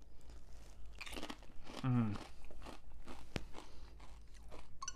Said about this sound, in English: I made myself some chips. I fried some tortillas and made chips. I'm gonna try one now. Haven't tried them yet. Gonna take a crunch. That's pretty good. It's a pretty good home fried chip. Crunch again here.